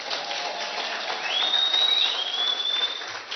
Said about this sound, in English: Somebody shout hallelujah. Hallelujah. Please, if you can, give the Lord a clap of celebration.